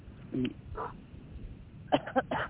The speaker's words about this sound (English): Pardon me, if you hear me cough every now and again, I am getting over. I was very sick last week, and I have this lingering cough and this tickling in my throat that happens still sometimes.